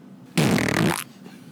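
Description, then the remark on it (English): A single loud fart sound effect played from a soundboard button, lasting under a second, with a buzzy, sputtering rasp that starts abruptly and cuts off cleanly, with no talking over it. “So this first episode, we're calling The Fart.”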